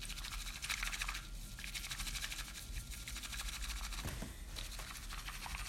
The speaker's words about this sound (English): I'm just going to add a little bit more water. Whisk it up a little bit more.